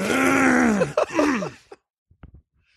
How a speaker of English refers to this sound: Oh my god, I gotta clear my throat.